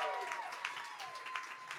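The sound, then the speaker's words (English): Audience applause at a live performance on the performer's 37th birthday: many hands clapping in a dense, steady, crackling wash at a fairly constant level, with a faint voice mixed in underneath. “Clap now, because you won't be clapping in like 5 years when I'm like, I'm 42, and you're like, that's not as exciting.”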